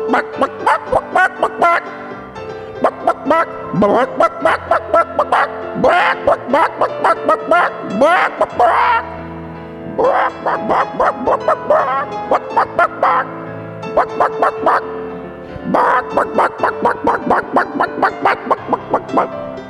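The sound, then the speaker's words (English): A person mimics a dog barking, letting out loud yips and barks in rapid bursts that repeat in quick runs with short pauses throughout. “Bark, bark, bark, bark. Bark, bark, bark, bark. Bark, bark, bark, bark, bark.”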